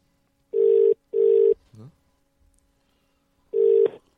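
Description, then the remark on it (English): An outgoing phone call ringback tone sounds in steady bursts, two quick rings, a pause, then another ring, with a brief murmur of voice in between. “It's ringing.”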